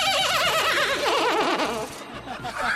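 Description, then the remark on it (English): A person's voice imitates a horse whinny, a loud, wavering, high-pitched neigh that trembles up and down for a couple of seconds and trails off. “It felt like a horse.”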